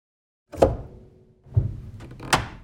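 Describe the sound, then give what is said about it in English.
Three wooden thumps from a piano pedal being pressed and released, each a dull low knock with a brief resonant hum in between, unevenly spaced and fairly loud, with no voices. “Scott sent the sound of him pedaling on his piano, which I used again under those hits in the verses.”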